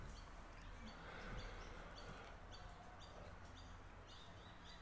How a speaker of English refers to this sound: It is 6:25 a.m. in the beautiful morning, the 10th of December. Listen to those birds. Oh my God, they're beautiful today.